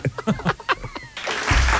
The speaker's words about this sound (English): The pause before the applause.